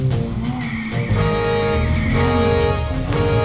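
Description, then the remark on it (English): Several car horns honk in overlapping, sustained blasts, their pitches shifting every second or so over a steady low traffic rumble. The honking is loud and continuous, with no voices. “Ooh, honking. Honking horns.”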